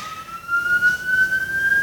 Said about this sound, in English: Oh, siren.